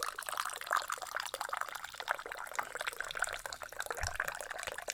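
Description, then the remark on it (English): Coffee pours steadily into a cup, a continuous splashing trickle with a bright, gurgling texture that holds for several seconds without any talking. “Of course you choose pouring coffee over slurping or munching.”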